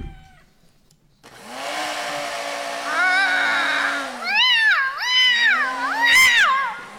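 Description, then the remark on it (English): A vacuum cleaner with a duster attachment starts its steady whooshing roar, and soon Bambi the cat, being vacuumed, yowls over it in long, wavering, high-pitched cries, several in a row, growing louder and more frantic toward the end. “That's when I learned Bambi did not like to be vacuumed.”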